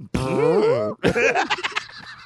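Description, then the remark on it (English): Someone blows a long, buzzy fart imitation with their voice, as if farting like Bane, its pitch wobbling up and down for nearly a second, then breaks into a short burst of laughter. “Oh, what if you farted like Bane?”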